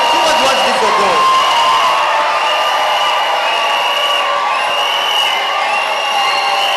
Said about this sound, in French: Crie pour Dieu, acclame-le, loue-le, chante, prosterne-toi, fais tout ce que tu veux pour Dieu.